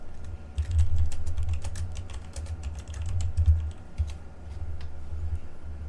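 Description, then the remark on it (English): Rapid, uneven computer keyboard typing while someone looks up a university's mascot: a steady stream of crisp key clicks lasting several seconds, with brief pauses, over a low background hum and no voices. “You're gonna hear the keyboard clicks.”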